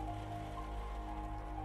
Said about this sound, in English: He made his way to the window. Peered out. Rain slowly trickled against the window.